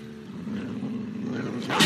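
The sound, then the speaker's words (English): A dog growls low and steadily, a continuous throaty rumble lasting a couple of seconds before a sudden harsher, noisier burst at the end. No one speaks. “Got a dog for you, Mr. Boxer. He's a real contender.”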